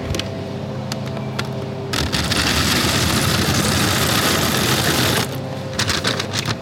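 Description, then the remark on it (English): A black lever on a dispenser clicks as it is pulled down, then pumpkin seeds pour out in a steady, dense rattling rush for about three seconds before stopping, followed by a few more sharp clicks and taps. No one speaks. “And now there is a black lever that I'm going to pull down and do my best not to spill loads of pumpkin seeds everywhere.”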